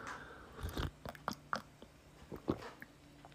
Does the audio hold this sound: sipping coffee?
yes